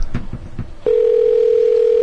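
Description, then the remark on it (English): A few soft low thumps, then a steady, clear phone tone begins and holds at one constant mid-low pitch, fairly loud and unbroken to the end, like a call ringing on the line. “It's calling.”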